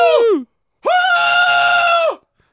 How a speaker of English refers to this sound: she can't hear you screaming in her ear. She loves that.